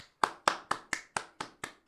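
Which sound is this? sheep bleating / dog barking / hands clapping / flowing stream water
hands clapping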